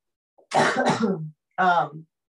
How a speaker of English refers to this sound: Sorry, I have to cough.